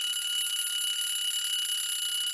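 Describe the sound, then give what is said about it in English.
A loud, continuous electronic alarm rings steadily, a bright high-pitched buzzing tone that holds without pause: the quiz timer, Rocky's Clock, going off to signal that time is up in a quiz. “Rocky's Clock! Rocky's Clock! You didn't beat Rocky's Clock.”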